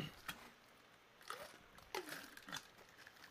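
drinking water

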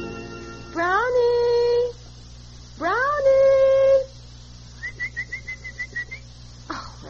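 dog howling and whining

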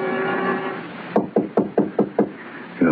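knocking

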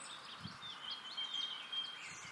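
willow warbler song

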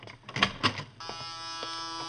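door buzzer

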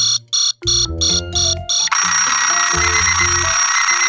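alarm clock ringing

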